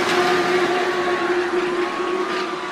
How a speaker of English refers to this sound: They're all scrambling into really expensive looking Escalades with tinted windows. And racing this way